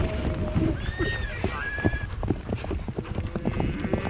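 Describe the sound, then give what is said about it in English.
Horse hooves clip-clop in a steady, uneven patter while a horse lets out a brief whinny early on, with faint voices murmuring in the background. “I learned how to ride a horse and began competing at Nadam when I was 5, she says.”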